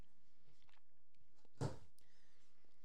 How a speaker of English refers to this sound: Yeah, you'll be chewing on this fucker for like the rest of the show. Just tuck some in the cheek for later.